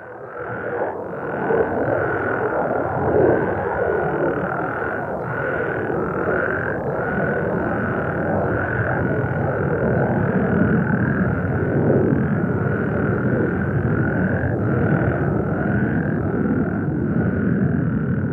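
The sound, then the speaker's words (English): A dense chorus of frogs croaking continuously, many voices overlapping in a steady pulsing rhythm, loud, with no talking. “when the military started doing test flights over Mono Basin, the roar of the jets would interfere, causing the frogs to lose their synchronicity.”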